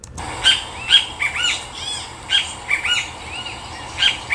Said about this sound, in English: Then in the morning, it's just Kiskadees, which is another cool kind of bird we get out here, which, you know, comprises the soundtrack of much of South Texas. Here, I'll play a Kiskadee call for you.